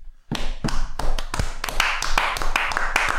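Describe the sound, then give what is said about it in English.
Hands clapping in a steady run of sharp, crisp slaps, about a dozen or more, picking up pace and growing denser and brighter toward the end. No voices. “Bosley's wagging his hat when we clap.”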